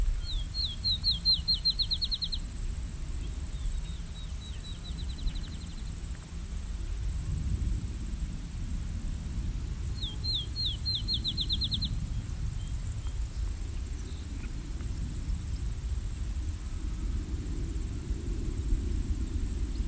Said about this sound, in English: Some Canada geese coming this way.